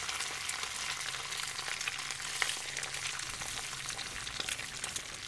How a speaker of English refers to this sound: Frying the egg over here. Frying the egg. Forever frying the egg.